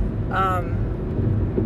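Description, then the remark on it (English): Steady, low rumbling road noise fills the inside of a moving car being driven to work, with a brief vocal sound near the start over the constant drone. “But anywho, yeah, I'm on my way to work, if you can't tell. I'm recording this in the car.”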